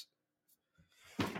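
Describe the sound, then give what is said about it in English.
A dog lands on a chair: a couple of soft knocks and shuffles, then a loud, heavy thump followed by a brief rustling scrape as it settles. “He landed on the chair behind me.”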